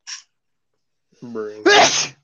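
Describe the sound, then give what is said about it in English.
A loud, exaggerated sneeze done for effect: a short sniff, a rising drawn-out 'ah' build-up, then an explosive, breathy 'choo' burst. “Them exaggerated ass cartoon sneezes and shit, bro.”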